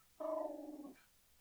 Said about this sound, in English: Here we go. Oh, puppies.